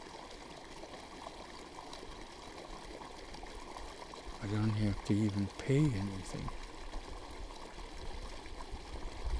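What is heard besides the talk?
flowing stream water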